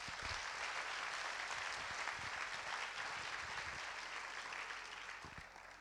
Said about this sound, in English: So give her a round of applause.